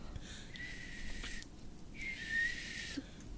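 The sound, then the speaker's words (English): Two breathy, airy blows of someone trying to whistle, each about a second long with only a faint, wavering hint of pitch coming through the rushing air. Fairly quiet, no talking. “It was nose me trying to whistle.”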